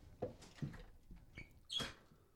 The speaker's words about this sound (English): Sounds like a very insistent guest. Yeah, that was a heavy, heavy knock.